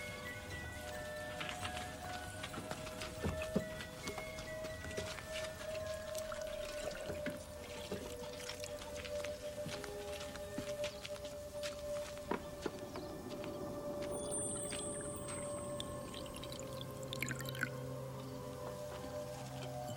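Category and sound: sound effect, water being poured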